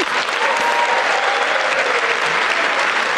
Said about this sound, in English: Hold on, can you stop it? Why are you guys cheering for Ukraine? I'm sorry. Are you cheering Joe Biden?